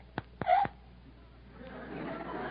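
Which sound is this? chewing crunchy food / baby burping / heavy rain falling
baby burping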